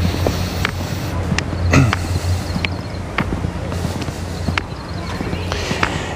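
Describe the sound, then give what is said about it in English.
A steady rumble of trucks on a highway down below fills the background, with a low droning hum and scattered sharp clicks and taps. “You can hear the trucks on the highway down there, off to my left.”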